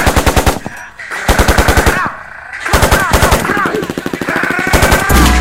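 Loud automatic gunfire rattles off in several rapid volleys of sharp cracks, each burst lasting under a second and separated by brief pauses, with faint tonal sounds underneath.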